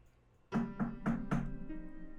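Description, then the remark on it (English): Four firm knocks on the wooden door of a house late in the evening, in a quick, even rhythm, each a dull, hollow thud with a brief ring after it, heard alone without any voices. “We're going to follow Urkel as he makes his way through the streets and approaches a familiar house and knocks on the door.”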